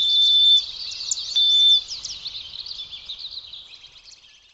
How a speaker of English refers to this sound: From the winter underbrush, sparrows give quiet calls.